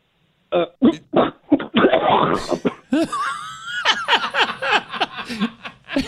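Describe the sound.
A voice imitates a hacking cough, as if coughing up a furball: several sharp, rapid bursts build into a raspy gagging heave, followed by strained, wavering vocal noises, loud.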